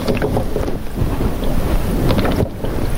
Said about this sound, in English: And if you line it up straight, it's going to set right down onto the cooler. And the water, it's now, you can probably hear it bubbling into the reservoir.